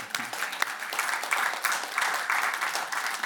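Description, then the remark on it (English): A crowd applauds steadily, a dense wash of many hands clapping at a fairly even level for a few seconds, with a brief low voice fragment at the very start. “They say just keep the applause and give money.”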